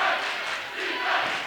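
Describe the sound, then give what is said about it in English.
A roaring basketball game crowd at a game involving the Warriors, a dense, steady wash of cheering and shouting voices that swells slightly at the start and again near the end, with no single voice standing out. “You can hear that crowd.”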